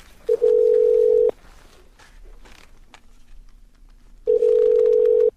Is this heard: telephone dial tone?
yes